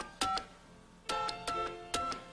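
Telephone touch-tone dialing: a string of short electronic beeps in uneven clusters, clear, with no voices present.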